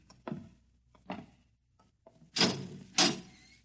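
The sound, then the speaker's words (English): A heavy steel door inside a double-walled silo is worked open and shut: a few soft thuds lead into two loud, resonant clanks in quick succession, with no voices. “Just a few steps up and another door.”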